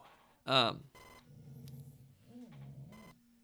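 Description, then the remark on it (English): A loud, shrill electronic beep from a dog collar being used to shock a dog bursts out once near the start, followed by muffled voices and a couple of short buzzy vibrating pulses in the background. “Wait, what's that sound? It's me shocking the crap out of this dog.”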